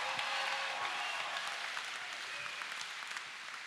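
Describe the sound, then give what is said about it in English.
A church audience breaks into sustained clapping for the Lord, a dense, even crackle of many hands lasting several seconds, with a few faint shouts mixed into the applause. “If you believe that, you ought to give the Lord a clap and a shout like I'm saying the truth.”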